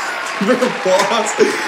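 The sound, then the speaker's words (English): Steady applause welcoming a guest fills the short stretch, a dense wash of clapping with a few sharper bursts, while voices cheer and whoop over it. “Give it up. Big applause.”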